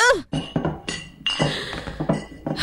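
A big box of finger painting equipment clinks and rattles as it is lifted, with a quick series of bright, glassy knocks and jangles spread over a couple of seconds.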